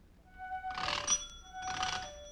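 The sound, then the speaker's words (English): The electric doorbell at number 14 Pembroke Street in Glasgow, Scotland, rung by an impatient caller, rings in two insistent bursts, each a harsh metallic jangle with a steady high tone running through it, separated by a brief pause. “That's the way the doorbell sounded at number 14 Pembroke Street in Glasgow, Scotland.”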